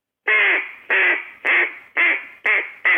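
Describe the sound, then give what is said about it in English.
A soft, lazy hen duck call used in duck hunting: six raspy, drawn-out quacks in a steady, even rhythm, clear with no talking. “But you always start easy so I don't blow them off, especially toward the end of the season after they've been hunted all year.”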